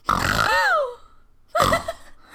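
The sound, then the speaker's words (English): A person imitates a horse snorting in fear: two loud, breathy, rasping bursts separated by a brief pause, the first longer with a wavering pitch that rises and falls. “When they approached the dog, the horses snorted with fear.”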